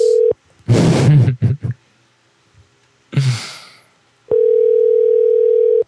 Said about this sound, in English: Sing your song at the beep. Beep. At the tone, please. Whoa. Sing your song at the beep. Is that what that was? I think so. Wow, that was interesting.